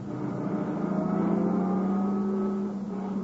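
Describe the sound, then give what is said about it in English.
A car engine hums steadily, its low drone rising slightly in pitch as the car pulls forward a little in front of a cabin, then easing back near the end with no voices present. “Maybe his car's around on the other side. Let's pull up a little.”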